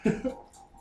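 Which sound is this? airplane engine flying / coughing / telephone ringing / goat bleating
coughing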